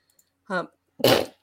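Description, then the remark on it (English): A single loud sneeze: a short voiced intake, then a sharp, noisy burst that fades within a moment, with silence around it. “I sneezed.”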